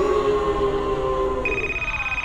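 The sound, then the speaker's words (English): A telephone rings with a steady electronic tone that shifts to a higher, piercing pitch partway through, sounding on its own without any talking. “It's ringing again!”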